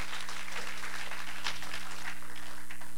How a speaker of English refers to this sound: Oh, come on, give the Lord a hand clap of appreciation. Thank you, Lord.